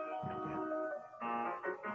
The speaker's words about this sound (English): Sounds like a toy piano on the phone. Yeah. It's not, though. It's a real one.